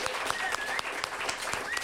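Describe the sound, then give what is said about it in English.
Steady audience applause, a dense patter of many hands clapping at an even level throughout, with a few sharper individual claps and a faint whistle-like tone riding on top. “But thanks so another round of applause.”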